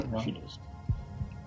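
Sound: heartbeat sound effect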